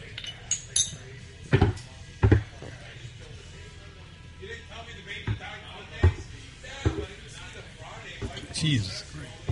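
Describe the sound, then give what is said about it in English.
Shot glasses clink together several times in short, sharp taps in a toast, amid a loud crowd of people talking and murmuring throughout. “All right, so we're going to do shots before we get started in anything. Cheers. Cheers.”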